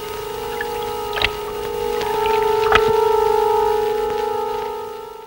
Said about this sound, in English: In the foreground, left of frame, is an electricity pylon. A girl stands, regarding it quizzically, then approaches it. It emits a hum, and she puts her ear to the pylon and listens intently.